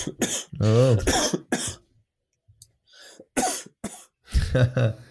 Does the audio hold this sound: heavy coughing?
yes